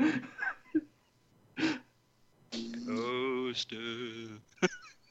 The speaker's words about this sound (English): He's falling asleep. Yeah, you hear him snoring. You're snoring.